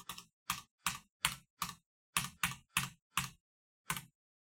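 About ten hard, clacky keystrokes on a computer keyboard, struck forcefully in an uneven rhythm with a short pause before the final key, with no voices.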